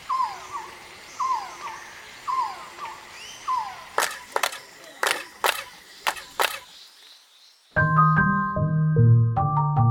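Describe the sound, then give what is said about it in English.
Rhythmic, downward-sweeping chirps, the echo of a Mayan pyramid, repeat about every half second, followed by a run of sharp claps, then a loud, tonal, warbling quetzal bird call with rich harmonics. No one speaks. “the suggestion with the chirping Mayan pyramids is that it imitates the sounds of the quetzal bird”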